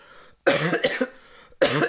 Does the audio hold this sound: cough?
yes